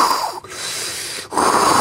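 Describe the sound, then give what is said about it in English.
A voice imitates heavy nasal breathing: a loud, breathy exhale, a brief pause, then another strong rushing breath, steady and airy. “and then I'm breathing, and it's like.”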